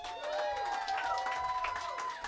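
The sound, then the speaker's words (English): A group claps and cheers for their host without pause, dense crackly applause mixed with high, sliding whoops and shouts that hold steady in loudness. “of applause for our host for coming through big.”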